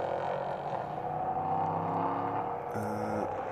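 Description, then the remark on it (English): The number 24 race car's engine roars steadily, its pitch shifting as it drives past on the track coming out of the gloom, with a brief high whine near the end. “If that's the 24 car coming out of the gloom.”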